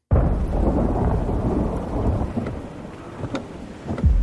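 Heavy rain pours down in a movie trailer in a steady, dense roar, with a deep rumbling undertone and a few sharper splashes near the end. No one speaks.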